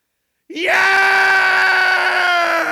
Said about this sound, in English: You're welcome to scream with us today, too. Here we go. In three, two, one.